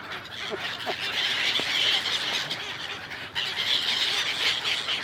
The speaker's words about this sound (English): The couple have just come over to feed the birds right where it stood, so. This next section, sponsored by the noise of gulls.